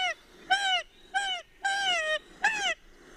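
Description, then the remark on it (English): A kokako, held in the hand and swung upside down, gives a distressed alarm call: four loud, harsh, nasal squawks in quick succession, each rich and slightly falling in pitch, with no other sounds around. “You get this call when you've got the bird in the hand and you're swinging it upside down.”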